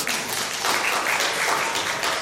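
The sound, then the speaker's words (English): An audience claps steadily for a couple of seconds, a dense, even patter of many hands with no pauses and no voices over it. “You can clap on that. That's okay.”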